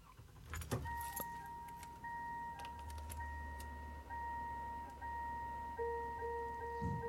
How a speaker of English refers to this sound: You've got quite obviously someone starting a car, and then that like noise of if you leave a car door open and you've got the keys in